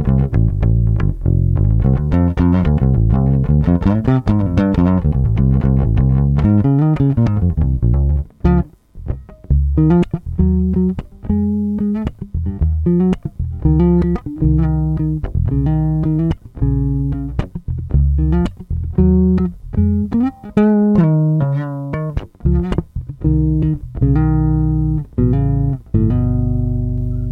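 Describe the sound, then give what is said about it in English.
An electric bass with tape-wound flatwound strings plays alone, starting with a few sustained, ringing low notes and then moving into a busy run of short, punchy plucked notes with a thick, rounded tone. “It's a nice kind of punchy woof in the body.”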